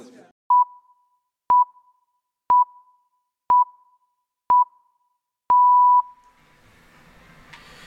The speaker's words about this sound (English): press play at the end of these beeps, pips.